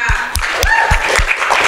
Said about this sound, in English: If you're new with us tonight, it's probably because you're probably thinking, like, why is he getting everybody to clap for him? No.